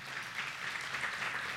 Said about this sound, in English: They're applauding for you, honey, because they know.